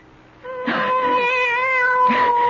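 A cat lets out one long, drawn-out meow, loud, rising into a sustained, wavering yowl that holds for nearly two seconds with no talking.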